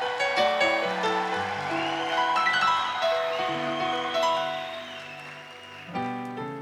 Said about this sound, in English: We also want to welcome our missionary from East London. Just clap for her.